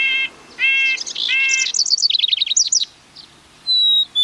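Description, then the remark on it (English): A cavity-nesting songbird sings: a few clear, buzzy whistled notes, then a quick tumbling run of high chirps, ending with a thin, sustained whistle, with no voices. “One of these birds might make its home in your yard if you put up the right kind of birdhouse.”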